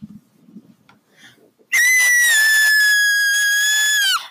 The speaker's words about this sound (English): He's the guy who yelled.